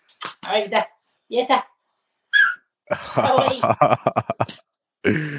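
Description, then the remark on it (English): A three-year-old male dog whines in a few short, high-pitched bursts, with people talking around and between the whimpers. “Top dog, as the dog's trying to say.”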